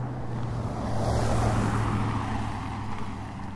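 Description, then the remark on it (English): A truck drives past on the right side in the United States, its low engine drone and broad road rumble swelling to a peak partway through, then easing off slightly as it moves on. No one speaks. “Not time to throw in that stereo truck on your right side.”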